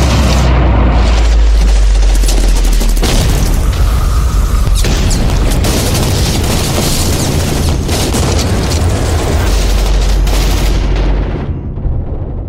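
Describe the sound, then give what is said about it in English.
Continuous battlefield din of booming explosions and gunfire as troops in contact take heavy fire, loud and dense, with heavy low rumbles and sharp bursts overlapping for the whole stretch before easing slightly at the end. No voices. “Troops in contact, taking heavy fire, need backup now!”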